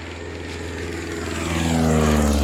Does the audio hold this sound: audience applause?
no